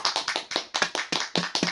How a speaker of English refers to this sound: Round of applause for Chainsaw Man.